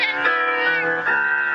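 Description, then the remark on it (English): A cat meows in long, drawn-out yowls that blend with an opera singer's sustained practice singing, both voices loud, holding steady tones for under two seconds. “Yep, Kitty sings too.”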